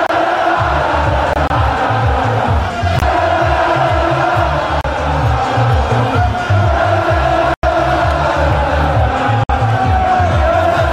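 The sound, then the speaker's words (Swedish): A dense crowd of AC Milan football fans in Milan, celebrating the Scudetto, chants and cheers continuously while following the team's open bus and hailing coach Stefano Pioli, voices blending into a loud, rhythmic roar with repeated sung phrases, briefly cutting out twice near the end. “Och i Milano lät det så här när fansen följde Milans buss och hyllade tränaren Stefano Pioli.”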